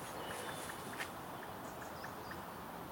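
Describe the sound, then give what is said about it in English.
A blackbird's soft sub-call, sort of an alarm call but not really, just testing: faint, quick popping notes repeating irregularly over steady background hiss, with a couple of thin, short chirps near the end. No one speaks. “I think it's a blackbird, actually.”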